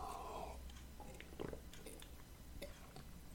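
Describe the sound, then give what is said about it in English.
Quiet wet mouth sounds of someone sipping and gulping coffee, a few soft slurps and swallows spread over a few seconds, with no talking. “I'm going to take a sip of coffee, pardon me.”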